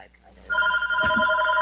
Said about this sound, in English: She's calling me now. Should I pick up so you guys can hear?